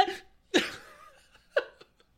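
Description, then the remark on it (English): A breathy intake leads into a sudden, loud sneeze with a trailing exhale, then a second, shorter and quieter sneeze about a second later. No talking. “That sneeze made me like heave.”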